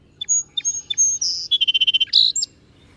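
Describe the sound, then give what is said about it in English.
A song sparrow sings clearly: a few sharp introductory notes, then a quick run of evenly spaced trilled notes, ending in a bright buzzy flourish, with no voices. “Some of the birds that I've seen there are song sparrows that are living in my grandmother's backyard.”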